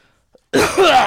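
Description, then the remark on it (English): A single loud sneeze bursts out suddenly after near silence, a sharp, breathy, noisy blast lasting about half a second, preceded by a faint quick intake of breath. “Bless you.”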